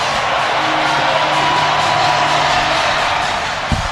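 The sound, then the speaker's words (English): A huge stadium crowd roars and cheers after Dominguez strikes out the final batter to save a 4-2 win in Game 3 of the National League Championship Series, one continuous, loud wash of noise that holds steady throughout, with no clear voices standing out. “Listen to this crowd.”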